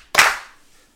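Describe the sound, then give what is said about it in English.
A single sharp hand clap rings out loud on its own, followed by a brief fading echo. “If you're happy and you know it, clap your hands.”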